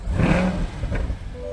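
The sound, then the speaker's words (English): A 2021 Chevy Corvette convertible sports car engine revs hard at a park on a hill overlooking the Pacific Ocean in Orange County, California: a loud throaty roar with a rising whine that surges and then settles back into a steady rumble, with no talking. “I met him in Orange County, California, at a park on a hill overlooking the Pacific Ocean, where he was very excited to show me his current loaner, the 2021 Chevy Corvette convertible.”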